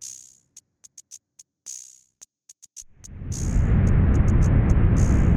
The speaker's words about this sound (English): And then to kind of further animate this whole scene that we're setting, there's these great big whooshes, like rocket engines zipping by, or nebula, or clouds of luminous whatever that are drifting past